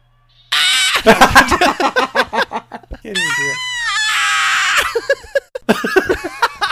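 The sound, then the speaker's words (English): A person mimics vampire shrieks with their voice: a burst of rapid, chattering screeches, then a long wavering high-pitched wail, and a final run of choppy shrill cries, loud. “Marlo speaks in an ancient guttural language. The other vampires shriek. Give us an example.”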